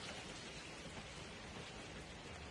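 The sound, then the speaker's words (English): Steady rain pours down on a hard surface, a dense, even hiss of drops that stays constant from start to finish, with no voices over it. “Oh no, families, it's raining.”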